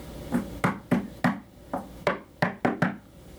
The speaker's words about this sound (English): I am in the library secret room now, and I'm looking around to determine if there are any answers here. I'm knocking on walls to see if there's anything here.